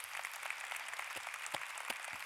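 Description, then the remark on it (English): Women in an audience applaud the men steadily, a dense wash of many hands clapping at once with a few sharper individual claps standing out, sustained at an even level with no talking. “And ladies, why don't we applaud these guys?”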